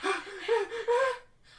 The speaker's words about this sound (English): Heavy breathing.